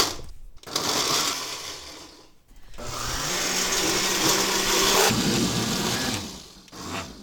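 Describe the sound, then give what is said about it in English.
A kitchen blender blending chopped tomatoes, onions and peppers on a hot day in Portland whirs in two short pulses, then runs loudly and steadily for several seconds before winding down, with a brief restart at the end. No one speaks. “All right, so I'm just ladling all the chopped tomatoes, onions, and peppers into the blender.”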